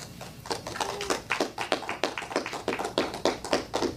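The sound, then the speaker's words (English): Sparse applause from a few people in a recorded clip played from a phone into a microphone, after an introduction of Vice President Joe Biden: sharp, uneven claps arrive at roughly three or four per second, moderately loud and steady for the whole stretch, with no one talking. “A lot of claps.”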